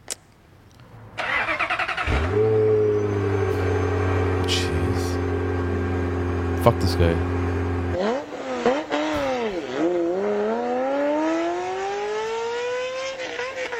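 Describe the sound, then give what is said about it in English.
A loud Ferrari motorcycle engine starts up and idles with a deep, steady rumble, then revs repeatedly, the pitch swooping up and down before climbing into a sustained high whine. A brief exclamation is heard. “And this guy. Ferrari Motorcycle.”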